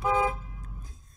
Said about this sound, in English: Did you hear that? I honk the horn, baby.